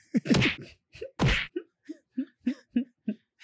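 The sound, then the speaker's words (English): A voice imitates punching sound effects while shadow boxing: two loud, hissy whooshing impacts, then a quick steady series of short grunted punches, about three per second. “And now … is shadow boxing. I don't know if those punches were aimed at me”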